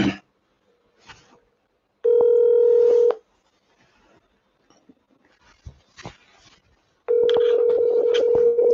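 Two long, steady telephone tones sound clearly, about a second and two seconds long, separated by a pause of soft clicks and faint rustling, with no one speaking.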